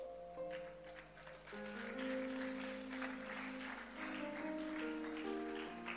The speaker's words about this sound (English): I don't know why you're clapping for yourself. Look at how those who are here for the first time, please lift your hand. Look at how many we are and how few they are, and see whether we should clap. And tell me whether we should clap.